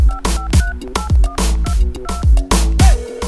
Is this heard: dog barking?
no